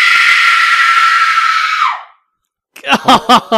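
A woman standing next to a sink lets out a loud, sustained high-pitched scream lasting about two seconds, trailing off with a downward slide. After a short silence, a few brief voiced bursts follow.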